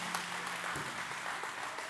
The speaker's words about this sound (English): Give up a round of applause for the Lord and His goodness.